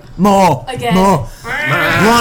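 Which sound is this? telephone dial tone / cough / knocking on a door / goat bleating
goat bleating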